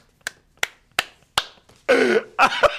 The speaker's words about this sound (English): Yeah, you better applaud yourself because I'm not getting it from anybody else. No. I'll pat myself on the back.